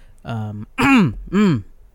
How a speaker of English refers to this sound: The classic clear my throat before I talk.